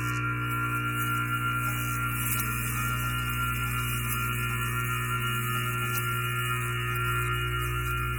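A steady, continuous 60 hertz electrical mains hum with a low buzzing tone and stacked overtones, holding constant and fairly loud throughout with no other sounds or voices.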